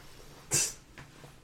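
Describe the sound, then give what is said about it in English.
A single sharp, breathy cough bursts out, followed about half a second later by a weaker second cough, from a lingering cough at the end of a cold. No talking, just a quiet background. “Oh, here comes that coughing fit.”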